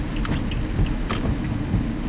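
Steady rain hissing outdoors with a deep, continuous low rumble of thunder underneath, plus a few brief brighter patters. No voices.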